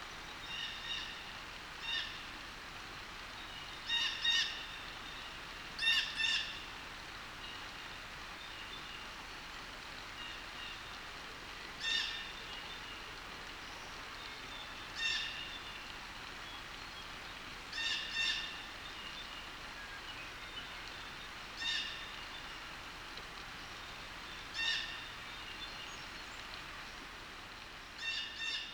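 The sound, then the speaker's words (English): Blue jays give harsh, high-pitched calls in short bursts, repeating every few seconds, some doubled, on a ridge in a mixed hemlock and hardwood forest in Shandaigan Hollow on April 26, over a steady hiss of a small stream rushing over the ridge. “Huh, blue jays.”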